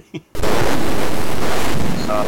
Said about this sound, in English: Gorf is no different. Your ship blowing up is actually, for some reason, it's very, very satisfying, even though that's something you don't want to see.